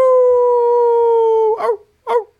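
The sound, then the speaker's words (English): A wolf outside gives a long, steady, loud howl that sinks slightly in pitch, then breaks into two short, wavering yelps. No one speaks. “I heard some wolf, goddamn wolves outside.”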